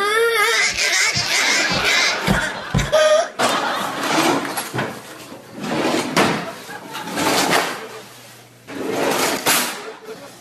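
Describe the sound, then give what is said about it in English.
Pretend drawers are opened and closed again and again, making busy plastic clatters and scrapes mixed with a child's vocal sounds and crying. “Those aren't real drawers, buddy.”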